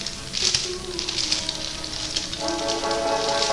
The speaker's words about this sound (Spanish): Si usted escucha la bolsita de las papitas, es porque estamos tragando. Así nos gusta. Aquí estamos en el Sonar Rock, tragando y bebiendo.